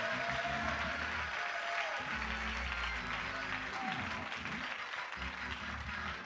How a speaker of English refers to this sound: Well, hallelujah. Clap your hands unto the Lord if you believe that here tonight.